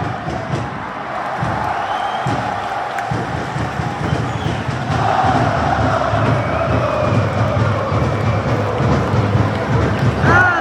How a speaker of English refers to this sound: And now the 3252, or members of the 3252, which is LAFC's cheering fan supporter group, which I'm a part of. Now you hear them getting into it.